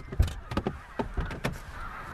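A flock of snow geese calling, with a rapid series of harsh, nasal honks overlapping from several birds, no voices among them.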